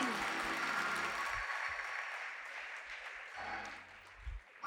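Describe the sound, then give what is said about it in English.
An audience claps steadily in dense, overlapping applause, a hand clap of praise to the Lord as they take their seats, holding strong, then thinning and fading near the end, with low murmuring voices underneath. “Come on, give the Lord a hand clap of praise as you take your seats.”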